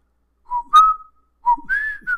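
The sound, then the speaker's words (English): Someone whistles a few bars of the theme from the film The Great Escape in two short phrases, clear bright notes gliding up and holding, with a brief pause between and no talking. “I think that's the wrong one. I think that's Great Escape.”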